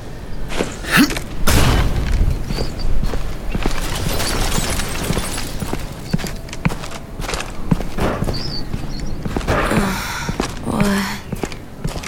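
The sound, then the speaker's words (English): A warship explodes while fighting in a battle: a heavy, rumbling explosion bursts out amid chaotic battle noise, with crashing impacts and scattered thuds, followed by more booms and debris clatter. “That was the SSV Kilimanjaro fighting a Reaper. It's a shame, since it was one of the Alliance's most powerful ships.”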